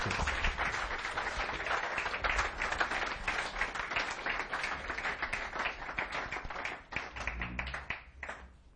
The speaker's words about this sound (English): Could you put your hands together and give a big, big round of applause?